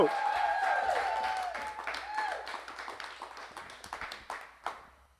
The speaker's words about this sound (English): So church, wherever you are right now, I want you to get on your feet. Huge round of applause for Pastor Adam Martino.